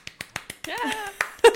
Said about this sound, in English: So I think a tiny applause for that.